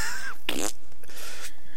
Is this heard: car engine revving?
no